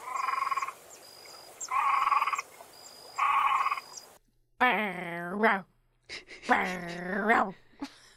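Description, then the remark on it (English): Three evenly spaced, raspy croaking bursts give way to a person voicing two loud, drawn-out, yelping barks in imitation of a dog. “I know, I feel like I'm just barking.”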